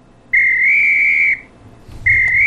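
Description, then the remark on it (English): A loud, steady whistle blast lasting about a second, then a short pause with a muffled clatter before a second blast starts and carries on to the end. “No, that's the bad whistle. No, that's a good whistle.”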